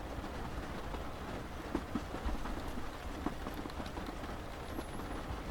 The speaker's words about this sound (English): The gentle huffs and puffs of the Jacobite steam train get steadily faster and faster until it reaches cruising speed.